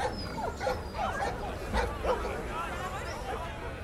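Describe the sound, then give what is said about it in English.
Several dogs bark and yip in overlapping bursts, with a few whimpers mixed in, over a steady background of murmuring voices and noise, moderately loud. “You got your traps. You got your dogs.”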